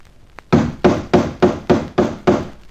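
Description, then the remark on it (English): Seven loud, evenly spaced knocks on the starboard side of a boat's newly painted hull in the dark, each blow a hollow, resonant thud that quickly fades before the next, in a steady rhythm with no voices. “That's my new paintwork you're knocking about.”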